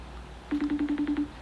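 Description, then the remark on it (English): A FaceTime call ringtone chirps from a phone: a quick burst of about eight rapid electronic pulses, clear and moderately loud against a quiet background, with no voices. “I hear a phone ringing. Yeah, that's FaceTime.”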